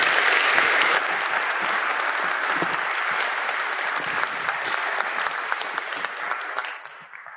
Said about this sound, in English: All right, give him a round of applause, folks. You girls did great.